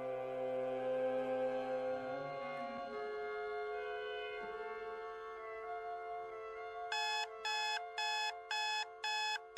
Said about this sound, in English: Forgot to turn the blasted alarm off.